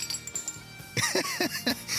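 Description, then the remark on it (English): Glasses clink together several times in quick succession as a bottle of champagne is opened, bright ringing tings that overlap and linger, fairly loud, with fainter chiming before them. “Let's crack that bottle of champagne now.”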